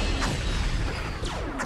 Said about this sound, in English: I don't know what the explosions are. All right, go ahead. Shooting goalposts. I mean, I think the explosions and the sound effects really say it all.